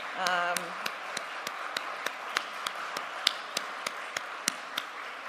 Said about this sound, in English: While you are standing, I want you to give just another round of applause for this fabulous morning of kids and youth.